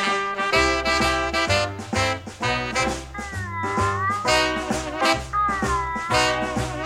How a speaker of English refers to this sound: we'll be right back after a little bit of the soundtrack to That Darn Cat